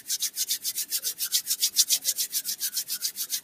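Hands rub together quickly and steadily to warm the palms during a guided exercise, producing a bright, airy swishing that pulses about seven times a second throughout, with no voices present.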